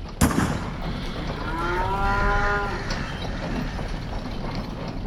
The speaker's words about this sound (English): Cows? All that fuss for cows on the road?